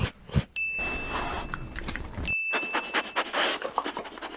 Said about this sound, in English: It's the same sound. No, just dog smelling.